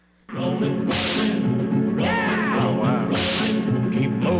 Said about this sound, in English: I never made that connection, but that's totally it's got that sort of sample in it, and then also with the whip, it's inspired by the opening theme from the old TV show Rawhide, starring Clint Eastwood.